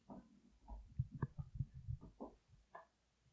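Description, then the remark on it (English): A dog, Scout, gnaws on his bone, producing an irregular run of low, wet crunches and clicks that come in quick clusters for a few seconds, with no voices. “Scout is chewing on his bone right now. It's so loud.”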